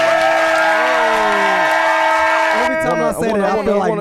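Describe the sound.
Clapping and cheering from a crowd fill the first few seconds over a steady musical tone, then cut off as people start talking.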